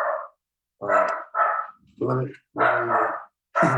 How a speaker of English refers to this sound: The dog has things to say.